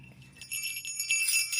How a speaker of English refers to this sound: Where's mine? Where's my bell? Here we are.